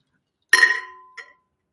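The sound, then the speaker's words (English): Glasses meet in a toast with a bright, ringing clink that lingers and fades, followed a moment later by a softer second tap. Clear, with no voices. “Oh yeah, our cheers.”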